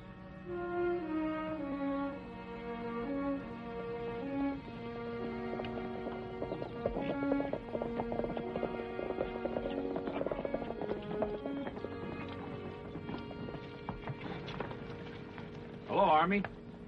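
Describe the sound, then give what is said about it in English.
Horse hooves clip-clop at a steady walking pace beneath loud orchestral music, coming closer, with a brief horse sound near the end. “Your mount go lame? Not that horse, Major.”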